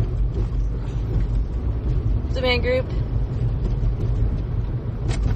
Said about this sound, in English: What is up with this traffic? I have no idea.